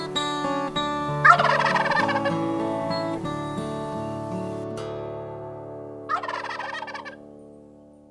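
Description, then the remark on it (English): A wild turkey gobbles twice, each burst a rapid, warbling rattle about a second long, separated by a few seconds, over a steady droning musical tone in the background. “Although we didn't see any wild turkeys, I bet they're here, and I bet they saw us.”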